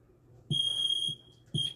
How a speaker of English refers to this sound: This scared me. Oh my. Sounds like the sounds like the school fire alarm.